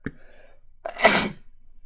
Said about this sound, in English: Okay, hold on. Sorry. Sneeze coming.